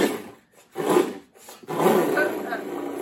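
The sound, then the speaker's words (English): A voice imitates a boat motor starting: two short, rough sputtering bursts, then a longer sustained buzzing growl that holds steady to the end. “What are you doing? Starting the boat?”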